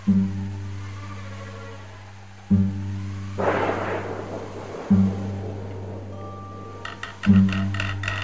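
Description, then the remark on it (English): On a stormy night, a single rolling crash of thunder swells up midway and fades over a few seconds, set against a steady low electrical-sounding hum that pulses on and off. “It was a stormy night, I believe.”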